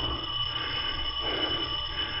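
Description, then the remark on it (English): A doorbell rings on a rainy night in one unbroken, steady buzzing peal with a high metallic edge, holding constant for a couple of seconds without any voices. “At least let the doorbell go back to sleep, can't you?”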